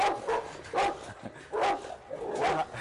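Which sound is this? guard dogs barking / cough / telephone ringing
guard dogs barking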